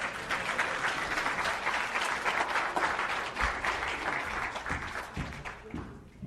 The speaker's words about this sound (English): Now let's give them a round of applause.